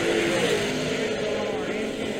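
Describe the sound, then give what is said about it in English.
A drag racing car's engine roars loudly and steadily for a couple of seconds, a dense, rumbling blast with a droning, slightly rising whine running through it. “Car ran dead on, though.”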